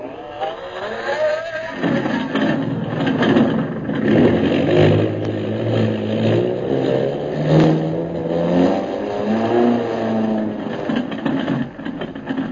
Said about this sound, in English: after getting the airplane repaired, Jungle Jim, Hawkins, and Kolo prepare to take off for Mandalay. Turn the motors over, pilot.